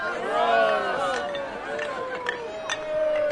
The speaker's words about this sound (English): You can hear the big beer mugs, 1 liter, of course, and they clink to each other. It makes this toasting noise of beer mugs.